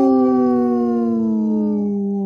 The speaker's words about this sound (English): Howling for Wolves, protecting wolves for future generations. Howl!